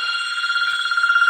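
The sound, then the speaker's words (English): A telephone at Ron Miller Race Cars rings with a steady, high electronic trill, its bright warbling tone holding for over a second and growing slightly louder, with no voices. “Somebody calling Ron Miller Race Cars right now?”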